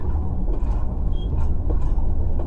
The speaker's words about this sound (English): The train has really picked up speed now.